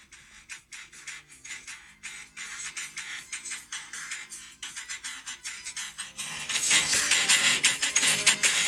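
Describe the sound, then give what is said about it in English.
Rapid, rhythmic bursts of Minecraft door clicks arranged to mimic a rap vocal's cadence, with no speech. The clacking grows denser and louder toward the end. “It's just a Minecraft door.”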